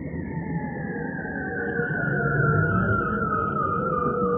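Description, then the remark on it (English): A bearded seal's underwater song, recorded with a hydrophone: one long, eerie whistling glissando glides slowly downward and holds steady throughout, fairly loud over a low, rumbling watery background. “Yep, these weird alien-like noises are bearded seals.”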